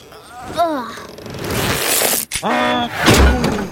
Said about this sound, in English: Oh, the rope broke.